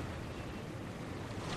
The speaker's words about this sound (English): Well, here in Salt Hill, on a bright April morning, we are on the seafront, hearing the white waves lapping against the shore and thinking of the ocean stretching as far as the Americas